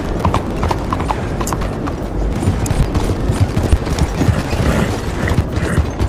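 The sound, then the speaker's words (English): Steady, rapid clip-clop of horse hooves trotting as a horse is ridden along railway tracks in a video game, a continuous rhythmic clatter over a dense, rumbling background with faint creaks and mechanical noise, no voices. “I don't think I'm supposed to be riding on the tracks like this, but okay.”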